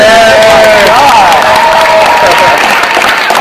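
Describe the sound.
A crowd cheers and applauds loudly and steadily, a dense wash of clapping with excited voices and a few high whoops rising over it throughout.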